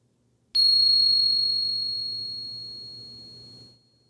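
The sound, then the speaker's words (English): A single meditation bell is struck once, ringing with a bright, clear tone that sustains and slowly fades over about three seconds before cutting off, heard alone with no talking. “And here comes the bell.”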